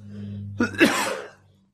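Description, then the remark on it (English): A single muffled cough into both cupped hands, bursting out sharply and fading within about half a second over a low steady hum. “Oh, look at you again. Both hands. Right. Cough it into your hands.”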